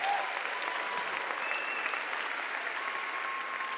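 A crowd applauds the CU Model UN team steadily, dense overlapping claps at an even, sustained level for several seconds, with a faint murmur of voices beneath.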